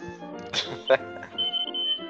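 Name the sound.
smoke detector alarm beeping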